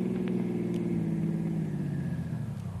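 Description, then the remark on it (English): A car engine hums steadily, then its drone drops in pitch and winds down toward the end as the vehicle slows to a stop. No one speaks. “Stop the car.”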